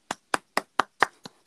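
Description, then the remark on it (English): A single person claps seven times in a steady, fairly quick rhythm, each clap sharp, with the last couple slightly softer. No voices. “Am I clapping by myself?”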